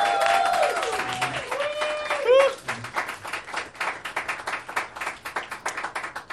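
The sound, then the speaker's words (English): An audience breaks into sustained clapping, dense and loud at first with a few high whooping cheers on top, then settling into a steady patter of applause that gradually thins. “Y'all, I've asked you every time to clap again for everyone.”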